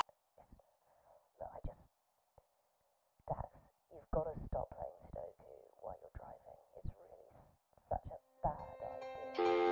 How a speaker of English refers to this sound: Leave a message after the beep.